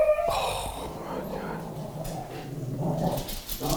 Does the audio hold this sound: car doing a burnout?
no